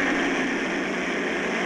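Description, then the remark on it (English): A voice imitates a garbage truck at 5:30 in the morning, a steady, loud, rough engine roar that holds one even level for under two seconds, with no pauses or changes in pitch. “My first impression is that of a garbage truck at 5:30 in the morning.”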